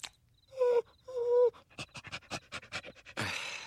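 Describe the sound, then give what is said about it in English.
A police dog gives two short, high whines, then pants in quick, steady bursts, ending with a brief rush of noise. “Oh, my God, a police dog.”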